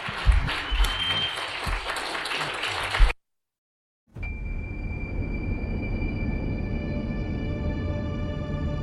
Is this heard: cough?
no